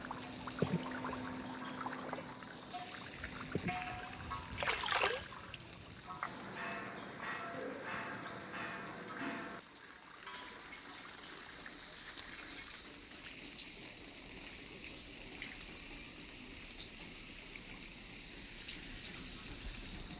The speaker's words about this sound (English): One is just like pond, small lake, and the other is traditional installation, and water once go to underground, and they put pipe into underground, and from the pipe we can hear the sound of underground of water.